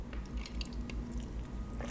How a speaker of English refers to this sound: Let me take a sip of my cocktail. Hold on a second.